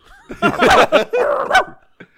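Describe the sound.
A person mimics a dog barking with a quick run of gruff, voiced woofs and snarls, loud, followed by a brief pause and a faint trailing sound.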